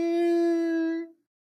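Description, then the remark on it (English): A voice imitates an eerie waterphone tension sound effect: one steady, bright, buzzy wail held for about a second, then cut off abruptly into silence. “And then they play the water phone tension sound that goes.”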